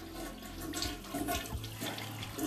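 A toilet flushes with a steady rushing of water that swirls and gurgles for a couple of seconds, with no voices over it.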